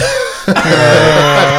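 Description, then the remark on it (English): A loud vocal cough imitation made on request: one sharp burst that stretches into a long, rough, roaring rasp, delivered alone with no other talking. “Hold on, T-Rex, just cough.”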